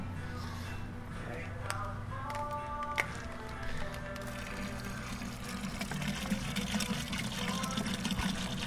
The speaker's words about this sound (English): And I think we should probably add some more water at this point, because it looks a little thick. Go ahead. Yeah, let's add some water to this.